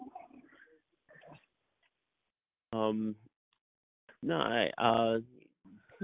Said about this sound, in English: Is that the little wiener dog? I'm sorry. Yes. It's him and the terrier. They're crazy.